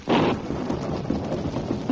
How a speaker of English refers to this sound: The rain's let up, but the thunder and lightning may keep up for hours.